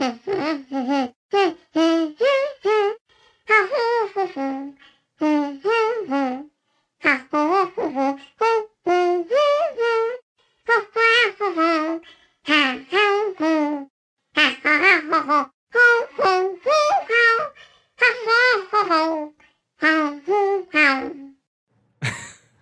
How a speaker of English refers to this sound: let's listen to Yoshi humming … song in Mario Kart 8